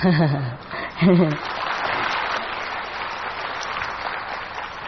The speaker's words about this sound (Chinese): 怎么不摆手呢？我也要拍手啦，因为师父要休息一下。